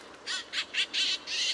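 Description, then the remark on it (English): A series of five harsh, raspy Canada jay calls in quick succession, each a short burst with the last two drawn out longer, clear with no talking. “And unlike most other birds that nest in spring and summer, Canada jays spend that time caching food for the next winter.”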